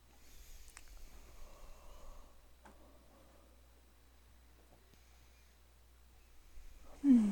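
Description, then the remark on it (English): A near-silent stretch with faint background hum and a few soft ticks, then near the end a sudden loud yawn with a voiced, downward-sliding groan that cuts off abruptly. “Yawning, I see. I'm sleepy.”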